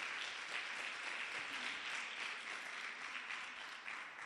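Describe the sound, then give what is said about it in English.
A church audience claps for themselves steadily for several seconds, a dense, even patter of many hands with no pauses and no voices rising above it. “Clap for yourselves.”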